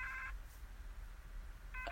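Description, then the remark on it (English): Electronic Morse code beeps spelling goodbye three times: a short run of steady, mid-pitched tones at the start, then a pause over low rumbling background noise, and another burst of beeping at the end. No one speaks. “And then goodbye in Morse code 3 times.”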